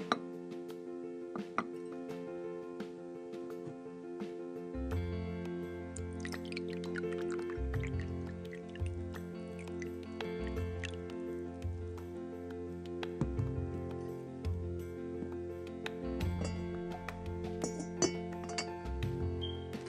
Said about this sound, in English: But before we begin our etiquette lesson of the day, allow me to pour a cup of tea.